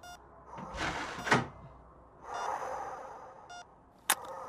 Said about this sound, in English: Thanks, ma'am. Pull that door with you.